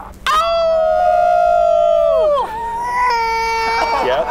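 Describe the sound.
A person imitates a wolf, holding one long, loud, steady howl that drops away at the end, followed by a softer, wavering wail as other voices join in.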